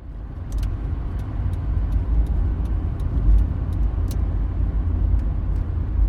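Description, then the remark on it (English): A hired car drives steadily along a quiet road on the Isle of Lewis, leaving Stornoway early in the day, its low engine rumble and tyre roar heard from inside the vehicle, with faint regular ticking, like an indicator, over the top. “I hired a car in Stornoway and hit the road.”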